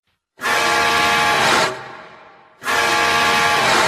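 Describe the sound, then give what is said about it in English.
A loud, brassy horn of the truck from the film Jeepers Creepers blares in two long blasts, the first about a second long, then a decaying tail before a second sustained blast starts abruptly, rich in harmonics. “Or the horn from the ugly truck in Jeepers Creepers.”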